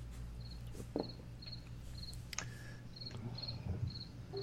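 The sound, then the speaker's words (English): Crickets chirp steadily at dusk in a quiet outdoor setting as it starts to get dark, their high, rhythmic pulses repeating about twice a second over a soft low hum and a few faint clicks. “Do I hear crickets too? It's starting to get a little bit dark here.”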